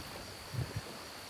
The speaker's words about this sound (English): This day is hot. If you listen close, you can still hear the summer cicadas in the grass along the riverbank.